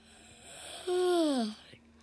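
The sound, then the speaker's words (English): A single drawn-out yawn, voiced, its pitch sliding slowly downward for about half a second before trailing off, with a faint steady hiss in the background. “Is there anybody yawning?”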